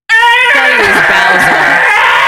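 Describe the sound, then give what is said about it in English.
A person lets out a loud, shrieking roar in imitation of Godzilla, one sustained raspy cry that starts abruptly and wavers downward in pitch for about two seconds. “Like the, and he does like the Godzilla noise and he starts breathing fire.”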